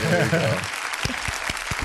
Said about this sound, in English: I'm going to put the applause. You can't hear it, but hey, there we go. The applause button.